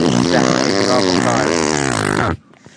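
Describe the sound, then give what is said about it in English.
A loud, buzzy electric car warning drone with a rich, wobbling pitch holds steady for a little over two seconds, then cuts off abruptly, leaving near silence. “No, it's just an electric car.”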